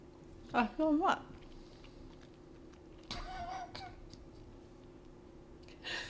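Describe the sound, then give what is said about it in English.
Crunchy chewing of a salted, mustard-flavored pretzel in short bursts, with a muffled voice making mouth-full sounds early on and a faint steady hum underneath. “I can chew the pretzels, though.”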